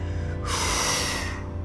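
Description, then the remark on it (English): A single harsh, sharp, loud intake of breath, like a panicked gasp lasting about a second, as a person breathes too fast and too hard, with no talking around it. “I took my hands away from my face, but I felt myself breathing too fast, too hard.”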